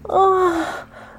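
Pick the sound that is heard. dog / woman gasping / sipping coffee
woman gasping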